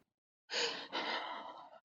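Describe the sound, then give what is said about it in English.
Two sharp, ragged gasping breaths drawn in quick succession, loud, as a woman gasps for air and hyperventilates, after a brief silence and with no talking. “Mark is trying to calm her down, but she can't stop hyperventilating.”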